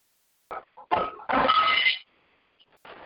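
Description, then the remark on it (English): A dog that needs to go out vocalizes in a few short, rough bursts followed by one longer, noisy sound, then a brief pause before another short burst. No one speaks. “I'm praying, and my dog needs to go out and just gotta pause for a second.”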